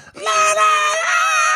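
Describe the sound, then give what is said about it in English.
A voice lets out a sustained, loud, high-pitched scream lasting over a second, mimicking a panicked shriek with a slight rise in pitch partway through. “Like panic, like, kind of screaming.”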